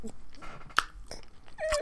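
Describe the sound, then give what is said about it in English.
A crisp crunch of someone biting into food, with softer chewing clicks before and after. One sharp bite stands out in the middle, with no speech. “And you're chewing, and it's doing.”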